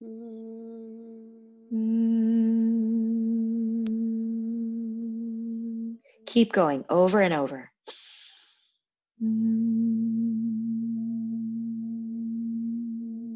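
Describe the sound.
People hum a steady, low, sustained tone in two long stretches, broken in the middle by a short spoken instruction before the humming resumes at the same pitch.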